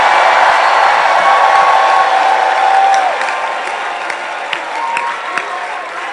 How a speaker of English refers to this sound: Give the Lord a shout and a clap offering.